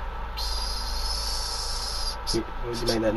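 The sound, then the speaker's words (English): A voice imitates urinating at a petrol station on the way out to Birmingham, with a long, steady, breathy hiss lasting about two seconds, followed by a few short voiced murmurs at the end. “Went in, had a wee, and this was me going in having a wee.”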